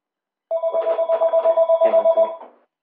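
A telephone rings with a rapid, trilling electronic bell, one unbroken burst of about two seconds, fairly loud, with no talking over it.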